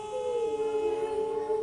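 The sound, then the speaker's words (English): A voice imitates a fire engine siren with a single sustained, wavering tone that holds steady and then dips slightly lower, sung alone at moderate loudness without any words, as a demonstration of the singing voice. “When we make that fire engine sound, that's our singing voice.”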